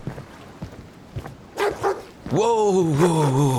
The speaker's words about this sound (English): A pack of wolfhounds greeted him with ferocious barks and snarls, chained to the ship's mast. These hounds were enormous, reaching up to Patrick's chest.